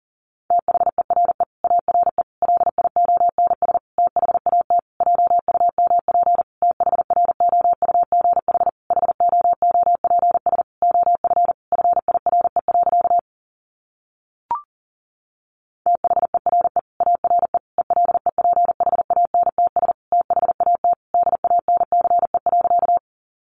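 Rapid Morse code at about 40 words per minute: a single steady mid-pitched tone keyed in quick dots and dashes, pausing for a few seconds midway, with one brief click before sending resumes.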